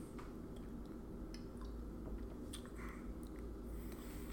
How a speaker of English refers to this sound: Comes in a glass bottle. Jimmy Buffett makes it, basically. It's not horrible. Here, let's give it a sip.